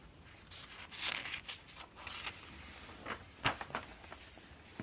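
Pages of an interior design magazine flipping, a series of quick papery swishes and rustles arriving irregularly, some crisper and louder than others, with no voices.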